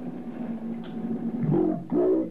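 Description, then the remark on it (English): A man's voice, recorded on an ultra-high-speed tape machine as he asked a dolphin a question, played back slowed down: dragged into a deep, droning rumble with growl-like swells; no words can be made out, and it surges louder in two pushes toward the end. “It's my voice when I asked him. So low at this speed, it's only a rumble.”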